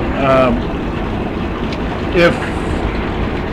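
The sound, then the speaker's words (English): A steady, broad rumble of a heavy long-range cruiser trawler boat of over 60 tons moving on a river at about 3 to 4 knots, with wind noise over the microphone and a couple of brief voice fragments partly buried in the din. “It's a long-range cruiser, or a trawler, you can call it.”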